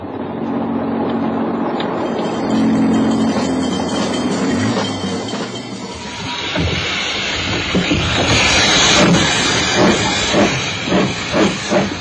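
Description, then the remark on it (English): A steam train hisses loudly at a station, a steady roar of escaping steam giving way to rhythmic chuffing and clanking as it begins to move, with no voices. “Passengers on that train, I see.”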